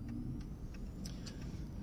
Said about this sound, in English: the supercharged, almost monster-like, certainly visceral sound of the supercharged V8 in the Jaguar, almost as if you were flying a World War II fighter plane when you wind that car up.